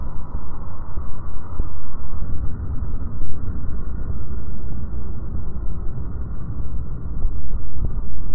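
Underwater shipping noise picked up in the ocean by engineers of HLS (Heat, Light, and Sound Research): a loud, continuous low rumble with a churning, grinding texture, steady for the whole stretch with slight surges, muffled with no higher tones and no voices.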